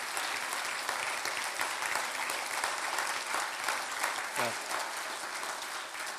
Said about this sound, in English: So on behalf of this team, thank you. Now you can clap for them if you want for what they did.